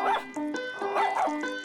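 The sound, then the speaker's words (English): A dog named Sandra, in a YouTube video, barks several times in quick succession, fairly loud, each bark carrying a high, slightly whiny yipping tone. “That's my dog.”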